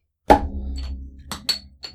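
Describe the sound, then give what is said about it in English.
Without a bottle opener, the cap of a Spotted Cow Grand Cru beer bottle is popped off against a table with one sharp, loud crack and a ringing resonance. Three lighter clicks follow as the cap bounces off the wall and clatters away. “I'm going to open this bottle on the table.”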